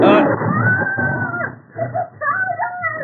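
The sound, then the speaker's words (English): A big cat snarls and roars, loud and continuous, with rising and falling yowling cries, like a tiger in the middle of an attack. “Hope the fucking tiger gets him outside.”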